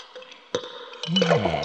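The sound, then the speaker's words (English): A glass clinks, then lemonade is poured in with a bubbling, gurgling flow whose pitch rises as the glass fills; moderately loud, with no talking. “Let me get you a glass of lemonade.”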